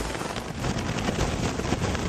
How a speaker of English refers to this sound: That's what the rain and wind from Hurricane Sandy sounded like in Jamaica.